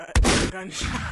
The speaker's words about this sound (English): Gunshot. Y'all should know how much this nigga's enjoying these fucking gunshots. The crowd said they need gunshots, so we gonna keep them giving gunshots, nigga.